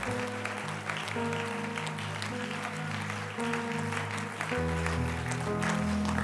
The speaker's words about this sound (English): Oh, clap your hands unto the Lord and give Him praise in this house.